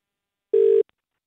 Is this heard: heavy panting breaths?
no